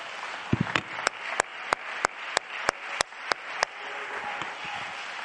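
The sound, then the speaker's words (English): An audience claps hands together in a steady, even rhythm, about a dozen sharp, loud claps, over a constant murmuring wash of crowd noise that lingers after the clapping stops. “Please be seated for a moment and clap your hands when you get there.”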